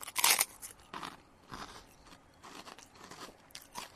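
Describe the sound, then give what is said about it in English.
A loud crunchy bite into a Japanese osembe rice cracker, followed by several softer crackling chews in an uneven rhythm, with no talking. “That is a real crunch of a very tasty, my favorite Osembe.”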